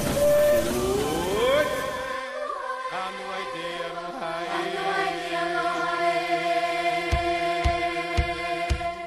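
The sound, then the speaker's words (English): The Disneyland Railroad steam train, the Disneyland Limited, pulls away for a tour of the park: a whistle slides upward and then holds a steady, loud, multi-toned blast, while sharp chuffs start to punch through near the end. No one speaks. “The Disneyland Limited, now leaving for a Grand Circle tour of the Magic Kingdom.”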